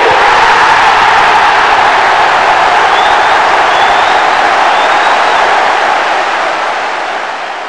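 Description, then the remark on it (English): A loud, sustained roar of a cheering crowd fills the whole stretch, with a few shrill whistles cutting through midway before the noise starts to fade at the end. “Secondly, I want you to get like the most fucking hype possible fucking crowd cheering right there.”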